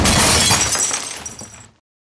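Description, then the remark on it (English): A loud crash of breaking glass as a chair is thrown through a first-floor window, a bright shattering burst followed by tinkling shards that fade out over about a second and a half, with no talking. “But if you throw something through it, get some fresh air in here. That's a good idea. This chair's going right through it.”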